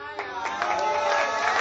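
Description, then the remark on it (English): An audience clapping and cheering together, a steady crackle of many hands with a few sharper bursts, mixed with a busy wash of raised voices throughout. “Listen, I don't start teaching when you start clapping.”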